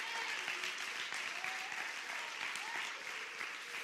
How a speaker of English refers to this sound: We are a Pentecostal church. Clap your hands if you're Pentecostal.